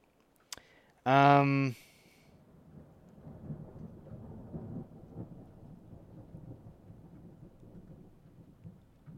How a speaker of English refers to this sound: Little bit of thunder, hey, a little bit of thunder. Ooh.